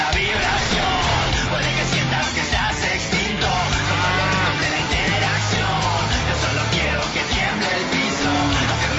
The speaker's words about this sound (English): Nice truck commercial. I want to share this commercial or this fake commercial.